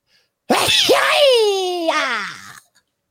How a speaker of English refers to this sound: Yeah, I try to do kung fu and sneeze.